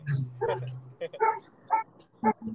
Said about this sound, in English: Hey, I hear your dog.